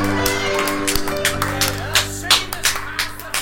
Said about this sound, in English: All right, everybody. Slow. Clap.